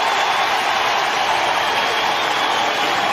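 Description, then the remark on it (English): A large baseball stadium crowd at a Reds game against Milwaukee cheers and applauds in a steady, dense roar as Bell goes off to an ovation after being tossed, staying loud and unbroken throughout, with no clear voices standing out. “And this crowd... this is a smart baseball town.”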